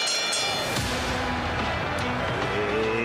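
A car is driven hard and aggressively through a chase, hitting other cars and maneuvering to get back onto route 29, its engine roaring loudly and steadily in a dense wash of road noise, with a couple of sharp bursts cutting through.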